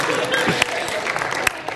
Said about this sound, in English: You can clap for them.